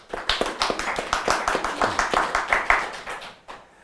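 A crowd applauds with steady, rapid clapping that holds at an even level for a few seconds, then fades out at the end. No one speaks over it.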